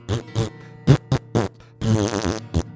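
A rapid series of loud, close fart noises: several short, buzzy blasts followed by a longer, wavering drawn-out one and a final quick burst.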